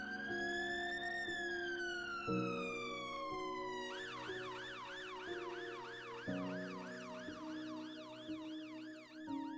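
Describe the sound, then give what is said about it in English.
An ambulance siren sounds loud as the ambulance arrives, starting with a slow rising-and-falling wail before switching to a fast, warbling yelp, with a steady engine rumble beneath it. “The ambulance service turned up quicker than expected”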